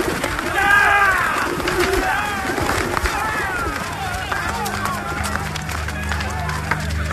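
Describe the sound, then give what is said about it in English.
Pigeons for sale coo and flutter amid a busy crowd bustle, with a low steady hum rising toward the end; indistinct voices murmur in the background. “He ordered those who sold pigeons, take them out of here!”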